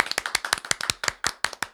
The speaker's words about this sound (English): You want to give a round of applause to R-Truth? Round of applause for R-Truth, please.